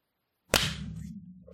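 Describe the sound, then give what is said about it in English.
After a moment of silence, a single sharp hand clap, made to sync recordings, cracks out loudly, followed by a lingering low hum and a softly decaying tail. No one speaks. “Okay, you want to clap at 20?”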